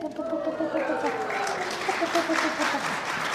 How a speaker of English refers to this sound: You know you're getting old when they applaud your age.